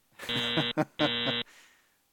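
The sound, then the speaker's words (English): A loud, harsh buzzer blares twice, each blast about half a second long with a brief gap between them, a raspy game-show style tone that cuts off abruptly. “Yeah, buzz his ass.”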